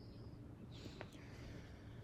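Faint birds chirp outdoors, with a few thin, high-pitched calls scattered over a soft, steady background hum.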